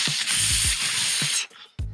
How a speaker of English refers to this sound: Were you sizzling some steak there?